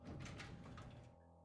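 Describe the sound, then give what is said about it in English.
Hospital elevator doors roll open with a steady mechanical rumble and hiss that lasts about a second before settling into a low hum, moderately loud, with no voices. “Just then, the elevator dinged and the doors rolled open.”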